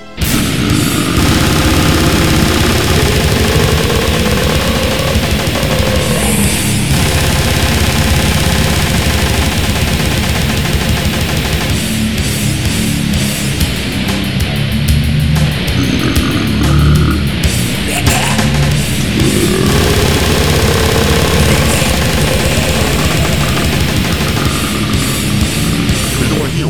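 A loud, relentless music track of dense distorted noise and rapid machine-gun-like drumming, with low sliding tones rising and falling, playing continuously with no talking over it.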